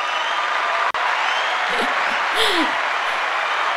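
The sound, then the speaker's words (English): A crowd applause sound effect: a steady, dense wash of clapping that holds an even level throughout, with a few faint voices rising briefly beneath it partway through. “In fact, you've done so well, the crowd is going banana.”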